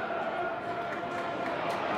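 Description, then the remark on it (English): A football stadium crowd roars steadily for two seconds, reacting as an attack is intercepted and play goes backwards. A dense wash of many voices at a fairly even level, with a faint sustained tone running underneath and no single shout standing out. “Going backwards again, listeners, as you can hear from the crowd reaction.”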